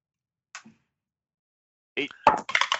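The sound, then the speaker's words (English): A single soft click, a pause, then a quick flurry of sharp clattering taps as a ten-sided die is rolled and tumbles across a hard surface before settling. “I need you all to roll me a D10.”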